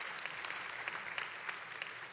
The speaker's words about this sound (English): I'll sleep tonight with a pitiful hand clap like that, I promise you.